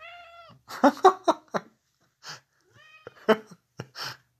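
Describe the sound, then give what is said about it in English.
A domestic cat named Kitty meows several times, drawn-out calls mixed with short chirps and breathy huffs, with brief pauses between them and no one talking. “You might hear Kitty in the background. What's up, Kitty? Want to say hello?”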